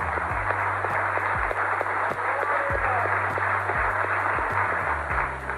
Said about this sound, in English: Just give our brother a round of applause.